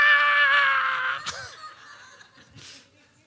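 A loud, sustained shrill screech fades into harsh cawing bursts and scattered squawks, like a flock of agitated crows crying out.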